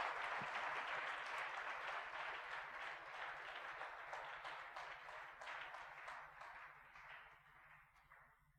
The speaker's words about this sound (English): Praise the Lord. Let's give a powerful clap of praise.